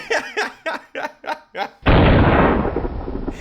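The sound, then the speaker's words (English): Six quick rhythmic bursts of snickering laughter, then a sudden loud explosion erupts with a deep roaring boom that rumbles and slowly fades. “for those who did not know, peanuts are one of the ingredients in dynamite, which I imagine means that if you have a peanut allergy, your explosion will be twice as big.”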